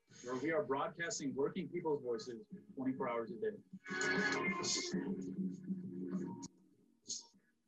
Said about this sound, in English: Somebody still has their audio on. Yeah, I think we've got some double audio going there. Echo, that's all right. Probably me.